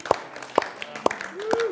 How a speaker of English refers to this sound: Let's stand and let's praise him together. Let's stand and applaud our King. Let's give him praise.